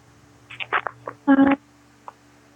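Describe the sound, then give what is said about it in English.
A voice over a phone line breaks up into short, garbled bursts with gaps of near silence between them, over a steady low electronic hum, as if the call keeps dropping out. “I don't know if like you're far away from the phone or it keeps cutting out.”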